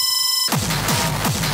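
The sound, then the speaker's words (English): Drum and bass music from a Netflix show trailer opens on a sustained electronic tone, then breaks into a loud, fast, dense beat with booming bass hits repeating about three times a second. “Oh, nice drum and bass.”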